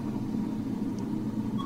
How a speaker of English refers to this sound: And then I'm going to press the power button again to start. And as you can hear, the air fryer is running and it is heating up or frying my food.